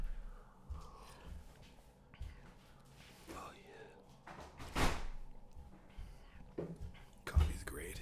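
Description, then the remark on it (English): A door is pushed shut with a soft thud, following a few shuffling, rustling movements, while quiet whispering murmurs in the background. “I'm just going to close that door really quick.”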